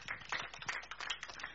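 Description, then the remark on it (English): A crowd applauding, with many hands clapping in a dense, steady patter of sharp, overlapping claps at moderate volume and no voices. “Round of applause.”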